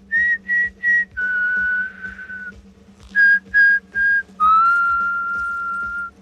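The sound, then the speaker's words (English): A group of people whistle a march tune clearly, two phrases of three short, crisp notes each followed by a long held note, loud over a low steady hum, with no talking. “And everyone stops whistling, except Bender.”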